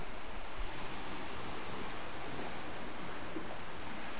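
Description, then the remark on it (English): A steady, broad wash of surf noise fills the scene, ocean waves rolling in continuously with no distinct individual breaks and no voices, heard from the lower deck of an inn overlooking the ocean. “And then again, here you have just fabulous views of the ocean and the waves coming in.”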